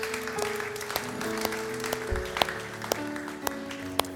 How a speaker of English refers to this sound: Amen. Amen. Can we just give that person a round of applause?